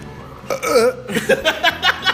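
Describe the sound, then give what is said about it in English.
A person makes a series of loud, guttural burping and retching noises, like gagging before vomiting, a long croaking heave followed by several shorter rhythmic gulps. “You're going to throw up on both of our phones.”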